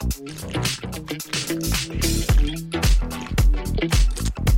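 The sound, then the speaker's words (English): Someone drinks Monster Deep Well Water from a can, with loud gulps and sloshing liquid in a steady run of swallows over several seconds. No one speaks. “For me, I'm going a Deep Well Water by Monster here. And boy, am I thirsty.”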